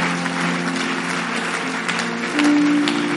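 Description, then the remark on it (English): An audience claps together in praise of God during a worship service, a dense, steady patter of many hands applauding while sustained instrumental tones hum underneath and swell near the end. “Can you clap and give God a mighty praise?”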